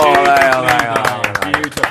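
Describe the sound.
A short burst of clapping from a few pairs of hands, quick and uneven, with a voice talking over the first half before the claps carry on alone.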